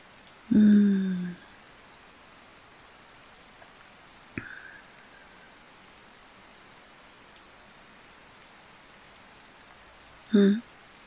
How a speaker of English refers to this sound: You can hear the quiet, endless drums of thousands of tiny droplets hitting the ground. But then there's that soft kind of clacking of the rain on the roof.